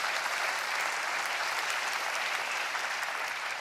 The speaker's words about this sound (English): You should applaud more than that.